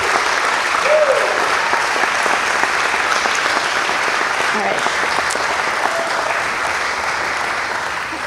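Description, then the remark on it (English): A large church audience at River Bluff Church applauds mothers on Mother's Day, clapping steadily for several seconds, a dense, even wash of many hands clapping at once with a few faint voices mixed underneath. “And let's celebrate these moms by clapping for them.”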